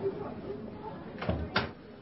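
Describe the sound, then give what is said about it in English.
A door is pushed shut, closing with a soft bump and then a firmer thud about a quarter second later, against a low background hum. “Shut the door, will you”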